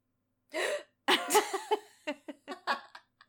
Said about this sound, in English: I gasped.